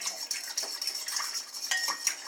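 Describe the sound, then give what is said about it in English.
A fork scrapes and clinks steadily against a bowl as yeast is stirred into warm water, a continuous bright metallic swishing with small taps, fairly quiet, with no voices. “We're going to stir the yeast around with a fork.”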